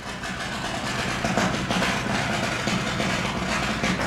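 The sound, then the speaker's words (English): Steady, harsh grinding of steel on a boat at a shipyard in Fairhaven, as painters prep it for painting, carries on without a break, a dense mechanical roar with a gritty hiss, fairly loud and nearby, with no voices. “you can hear the grinding of steel on a boat nearby as painters prep for painting.”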